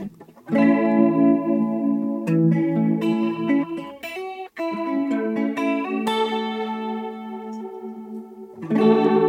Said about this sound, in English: So it's like three out of phase LFOs that are, they're like a sine wave with a faster sine wave overlaid on them. So it's sort of like a frequency modulated thing going on. So it gives a slow movement and a fast movement at once.